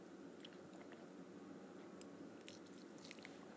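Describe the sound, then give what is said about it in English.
Quiet drinking sounds of a person drinking a fresh glass of ozonated water, ozonated for 20 minutes: small wet mouth clicks and swallows scattered over a few seconds against a steady low hiss, with no talking. “I'm drinking a fresh glass of ozonated water.”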